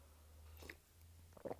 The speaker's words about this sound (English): Just need a little sip of coffee there. I'm old and tired.